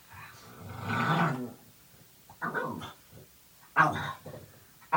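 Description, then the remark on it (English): Several low, rumbling gurgles of a person's stomach come in short bursts with pauses between them, ending in a brief, sharper stomach growl. The sounds are moderately loud, with no talking. “That last one was my stomach growling.”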